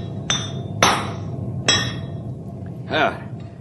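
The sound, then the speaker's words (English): Hammer blows ring out on a king-size horseshoe for a big horse named Storm: three sharp, bright metallic strikes in an uneven rhythm, each with a short ringing tail, followed by a softer wavering tone over a low background rumble. “This horse of yours takes a king-size shoe, man.”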